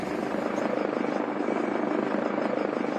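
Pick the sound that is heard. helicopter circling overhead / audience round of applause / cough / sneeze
helicopter circling overhead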